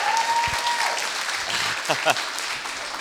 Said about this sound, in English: If everybody wants to give them a round of applause. Yeah.